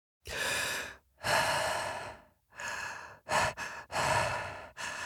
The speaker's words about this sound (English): And it's basically me mouth breathing for 6 hours.